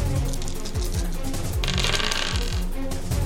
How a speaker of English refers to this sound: Wow, the same 2 dice rolled the same number again. 52 and 12. So that's also a success.